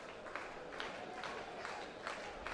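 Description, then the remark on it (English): Baseball crowd noise in Cajun country, top of the fifth inning, 1-1, BYU Cougars batting on a full count, wind picking up: a steady, dense wash swells, with scattered claps and cheers rising in brief bursts above a continuous murmur. “You hear the crowd getting into it.”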